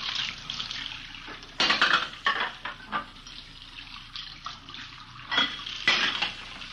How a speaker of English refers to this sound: We found her in the kitchen washing dishes. I just got a couple more to rinse.